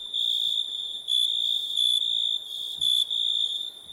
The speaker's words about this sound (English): Crickets. Hey, when this get edited, we gotta put the crickets right there. We putting the crickets right there doing the edit.